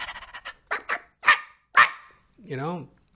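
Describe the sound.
An actor playing a dog in children's theater imitates a dog barking: a quick run of small yips, then a few louder separate barks, ending in a drawn-out, wavering whine.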